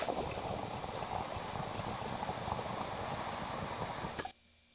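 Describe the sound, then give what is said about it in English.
Water bubbling steadily through a glass dab rig as someone pulls on it, a dense, continuous gurgle for about four seconds before cutting off abruptly. No voices. “I'm going to pull on it again and just kind of play with it and figure it out, because I might put a little more water in there”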